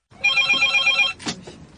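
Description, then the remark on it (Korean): A telephone on the restored inter-Korean West Sea military communication line rings with a steady electronic trill for about a second, fairly loud, as North Korea places the call, then cuts off as a brief clatter follows, like the receiver being picked up. “군통신선은 북한이 먼저 전화를 걸어왔습니다.”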